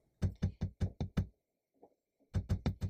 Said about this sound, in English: She was drifting to sleep, but was awakened by a series of tapping noises, as if someone was tapping on glass.